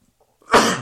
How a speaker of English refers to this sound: Woo. Kind of sneeze there